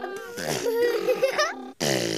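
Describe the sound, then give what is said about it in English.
Someone imitates a car muffler with their voice during a sing-along song about driving a car, making a loud, buzzy, sputtering lip-flapping sound that runs for over a second, pauses briefly, then starts again. “What sound does a car muffler make?”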